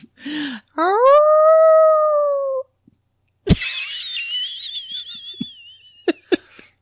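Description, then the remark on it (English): A person imitates a wolf howl: a short yelp, then a long, steady howl that sags slightly in pitch, followed by a thinner, wavering high cry punctuated by a few sharp clicks. “The howling like a wolf.”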